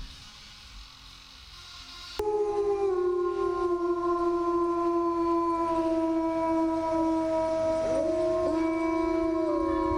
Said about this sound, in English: Is it coyotes? No, it is not. Is it wolves? It is wolves